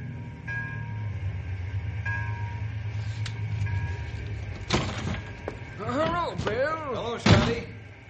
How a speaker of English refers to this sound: Boss, you'd better get going pronto, because here comes a ranger car down the road now.